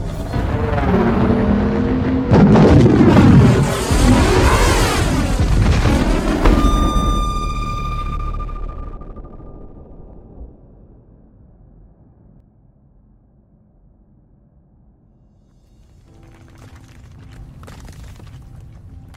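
A dreadnought ship carrying a behemoth crashes into a planet: a huge crashing impact bursts into a thunderous explosion boom with a brief metallic ring, rumbling for several seconds before fading, then faint crackling and debris.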